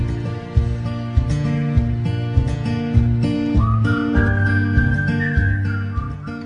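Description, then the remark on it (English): A whistled melody rides over a song's steady instrumental backing, entering partway through and holding long, clear, sliding notes at moderate loudness. No one speaks. “I like the whistling part too.”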